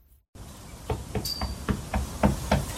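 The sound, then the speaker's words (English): A steady series of about eight sharp knocks on a door, evenly spaced and growing slightly louder, with no voices. “Knock, knock. Who's there?”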